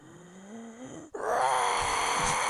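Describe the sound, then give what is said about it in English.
A man's voice imitates the anguished scream of Vincent D'Onofrio's character in a slow-motion movie scene where something sticks out through his shoulder: a low, rising groan, a split-second break, then a loud, strained, raspy shriek held to the end. “Like, I just remember, it's like that sound of that scream.”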